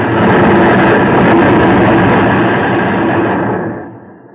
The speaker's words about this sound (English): Everything exploded in front of me. There were screams. That's all I remember until I woke up here.